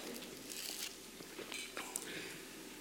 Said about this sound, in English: I left two or three swallows of coffee left in my cup, so I'm going to drink coffee while you guys ponder what you would sacrifice for the kingdom of heaven.